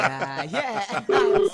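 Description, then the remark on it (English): Voices and a soft chuckle give way to a steady, flat electronic tone, like a phone ringing on the other end of an outgoing call, sounding briefly and clearly. “Good, it's ringing.”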